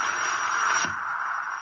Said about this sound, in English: Even the static's getting weaker now.